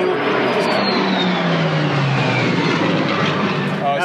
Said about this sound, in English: That was pretty cool. That was one of the Heritage flights. It was an A-10 and probably a Mustang, and I didn't catch what the third airplane was. F-16, A-10, and P-51.